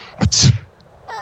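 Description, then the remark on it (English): A single sneeze: a quick voiced intake bursting into a loud, hissy blast, followed a moment later by a softer, brief breathy sound. “Yes, and here's a sneeze.”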